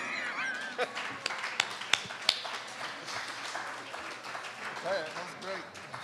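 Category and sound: crowd, audience applause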